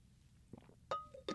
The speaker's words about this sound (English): Water sip here. Hold on.